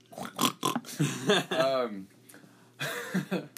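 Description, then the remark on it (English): A person imitates a pig with a series of nasal, grunting oinks and snorts, several short bursts followed by a longer squealing one. “We should put a little piggy noise.”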